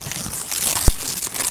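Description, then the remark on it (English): Continuous crinkling and ripping of wrapping paper that has got wet through, being torn open, with one brief sharp snap partway through and no voices. “This is a bit wet. It's got a bit wet through the paper.”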